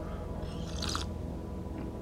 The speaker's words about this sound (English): You know, I'm sitting here with my cup of coffee really early in the morning, you know, take a sip.